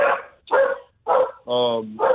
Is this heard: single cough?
no